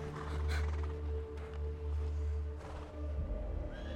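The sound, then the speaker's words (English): A person does a vocal imitation of a horse neighing: a drawn-out, droning whinny with breathy bursts, held steadily for a few seconds. “How'd you like my horse impression?”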